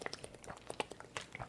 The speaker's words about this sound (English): I mean, it's water. I'm thirsty. Yeah, but you don't You don't do have that. To talk so loud. Yes, you swallowing hard.